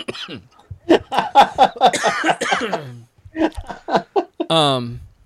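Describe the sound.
A person coughs several times in short, rough bursts, close and fairly loud, mixed with throaty, laugh-like vocal sounds and a brief voiced noise near the end.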